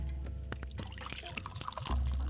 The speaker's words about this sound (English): No, beer. I pour some beer and drink.